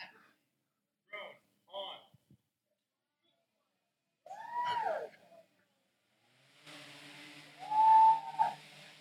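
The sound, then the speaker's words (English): A large drone spins up: after a few brief, scattered sounds, a steady humming whir with an airy, hissing rush starts and swells loud, holding a high whining tone through the end. “This thing is like a mega drone.”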